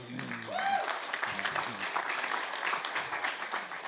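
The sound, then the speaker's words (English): A church audience at Rainier Christian Center applauds steadily for a pastor, a dense patter of clapping at moderate volume, with a brief voice or cheer rising over it near the start. “Gentle applause is all I ask.”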